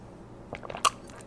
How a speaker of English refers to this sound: Listen to that. There's my Fitbit going off. It was dead yesterday, so it didn't. And today it is not.